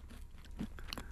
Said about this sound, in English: This is Zoe Lyons trying Marmite peanut butter on a bagel. Lovely, satisfying crunch of the bagel there.